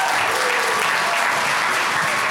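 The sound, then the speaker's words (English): Steady, loud applause from a church audience at Mission Church clapping for its pastors, a dense wash of many hands clapping continuously without pause for a couple of seconds, with no voices standing out. “Come on, keep clapping for Pastor Tyler and Pastor Rachel.”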